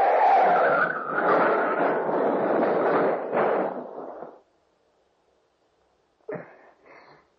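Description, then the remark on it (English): A car skids loudly off the road into a ditch for about four seconds, a harsh, sustained scraping rush that cuts off abruptly, followed by a pause and then two short, muffled bumps as it turns over and comes to rest. “Don't touch that wheel! Out of the ditch!”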